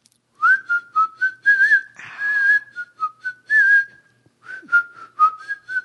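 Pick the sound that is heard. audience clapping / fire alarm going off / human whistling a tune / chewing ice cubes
human whistling a tune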